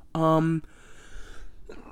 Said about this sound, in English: excuse me, still have a cough. And by still have a cough, I mean regained a cough.